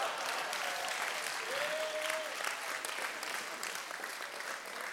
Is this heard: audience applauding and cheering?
yes